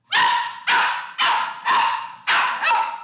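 A dog barks six times in quick, steady succession, loud, each bark sharp and bright with no other sounds or voices around it.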